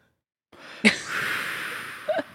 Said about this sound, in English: You and I, you might be hearing, listeners, maybe an inhaling sound, like somebody breathing in the air from heaven.